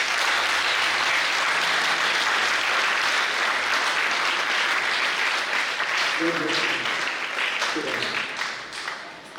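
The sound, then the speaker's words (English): An audience gives a big clap of praise, breaking into loud, sustained applause, a dense wash of clapping that holds steady for several seconds before easing off, with a few faint voices and tones mixed underneath. “Shall we give them a very big clap of praise?”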